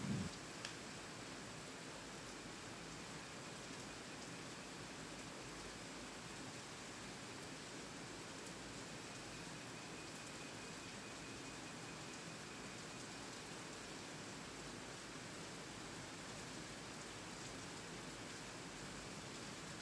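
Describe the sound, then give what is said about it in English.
Steady rain falls without a break for about 30 seconds, a dense, even hiss that stays constant throughout. No voices are heard, just the continuous wash of rainfall. “I'll give you 30 seconds of pure, locally sourced rain to reflect on your thoughts, okay?”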